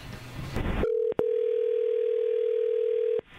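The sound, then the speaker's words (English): A steady telephone dial tone of an outgoing call placed by the Mix 94.7 radio show hums for a couple of seconds, briefly broken by two quick clicks, after a short burst of noisy, rumbling sound at the start. “so we're going to call him right now and see if he'll tell us what happened.”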